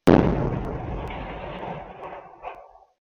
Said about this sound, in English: It felt like a bomb exploded. A backyard security cam from a nearby apartment captured the sound of the blast.